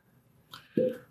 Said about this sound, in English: I think it sounded like the uncorking of a wine bottle. It sounded strangely like that. Someone's getting drunk. It sounds like someone's about to pour a goblet of wine. Okay. It sounds like someone is pouring a goblet of wine right now.